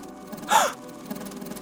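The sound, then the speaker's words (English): A woman gives one sharp, breathy gasp, fairly loud, a quick intake of air with a slight voiced edge, then quiet room tone. “She gasps, feeling him inside her, all of her, inside her every molecule.”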